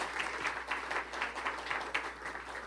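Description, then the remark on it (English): An audience at the Cathedral Church of the Advent in Birmingham applauds a guest speaker, a dense, steady patter of many hands clapping at once, sustained throughout with no voices over it. “I do want you to know they only clap for guests.”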